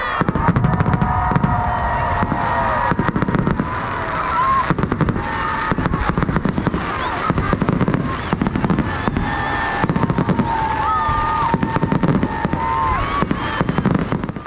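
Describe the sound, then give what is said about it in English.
Fireworks at the end of a Christmas tree lighting in Ashland crackle and pop in a dense, nonstop barrage for the whole stretch, with occasional whistling streaks and a low crowd murmur underneath. “Let me even share with you the recent Christmas tree lighting in Ashland that ended with fireworks.”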